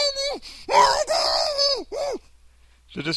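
A man lets out a series of loud, strained screams, one long wavering cry flanked by shorter yelps, with a brief pause before a final short shriek.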